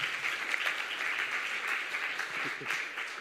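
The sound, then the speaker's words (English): An audience applauds for two birthdays: a dense, steady wash of many hands clapping at once, holding an even, moderate loudness for a few seconds with no voices rising above it. “So he says have a clap for these two birthdays.”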